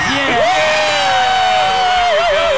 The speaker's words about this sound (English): It was our debut here, and you can tell by the ruckus response behind me how over we were with this wonderful crowd here tonight at this wonderful venue. Give it up, everybody!